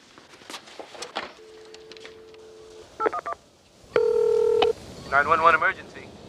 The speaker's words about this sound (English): I'm not sure of anything that happened that night, but I am sure that I pressed the 911 button, yes. On that phone? Yes, on that phone.